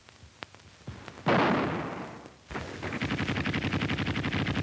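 Battle sound effect: scattered sharp gunshots, then a heavy explosive boom that rumbles and fades, followed by rapid, steady machine-gun fire rattling continuously to the end. No one speaks.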